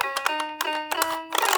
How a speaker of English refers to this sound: I can match your synth corner with the Fisher-Price keyboard.